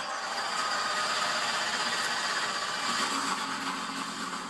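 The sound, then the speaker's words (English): A dense, steady roar of many powerful race car engines just started at Daytona, a loud sustained rumble that holds evenly throughout with no voices over it. “All right, engines are fired.”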